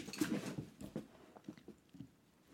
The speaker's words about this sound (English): My dog just jumped on me.